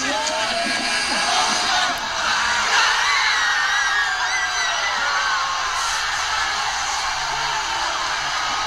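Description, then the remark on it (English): A huge arena crowd of Raptors fans roars continuously after the Raptors beat the 76ers 92-90 on a last-second shot by Kawhi Leonard, with shrill screams and cheers rising in waves over a dense wall of noise, loud and sustained throughout. “In an arena with 100,000 screaming Raptors fans, Kawhi Leonard's scream rang the loudest.”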